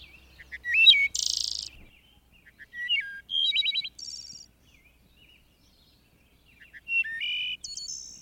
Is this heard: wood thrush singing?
yes